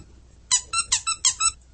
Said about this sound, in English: Oh, you want the squeaky toy? Yeah, with the toy? Things. Here it is. You got to take it out of her mouth, though.